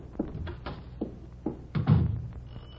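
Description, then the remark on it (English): Someone knocks on a door several times in an uneven rhythm, a few separate raps followed by a heavier, slightly louder cluster of blows, with no voices. “Will you open the door?”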